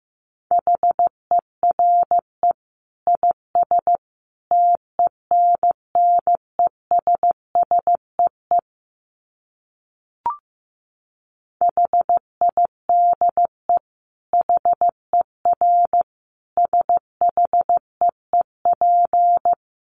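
Morse code at 15 words per minute: a single mid-pitched tone keyed into quick dits and longer dahs, grouped with short pauses, a silent gap and a click midway, no voices.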